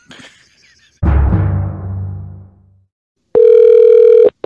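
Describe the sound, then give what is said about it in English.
A heavy clunk, like a handset being hung up, rings out and fades. After a short silence, a steady electronic telephone tone hums loudly for about a second, then cuts off. “You either speak to me or I'm hanging up the phone and you figure out what you got to do.”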